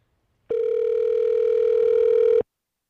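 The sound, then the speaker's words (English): A single burst of the ringing tone of an outgoing phone call placed from a Google Talk-type app, a steady, loud mid-pitched hum lasting about two seconds, with silence before and after and no voices. “So ring this guy up.”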